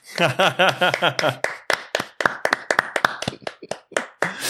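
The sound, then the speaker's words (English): Sharp hand claps in a quick, slightly uneven rhythm, about twenty in a few seconds, with a brief burst of voiced sound mixed in near the start; a clap for the USA. “And I think we have to start with just a clap for the USA.”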